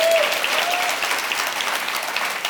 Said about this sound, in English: Somebody clap for Jesus. Amen. No, seriously, clap for Jesus, somebody, for real.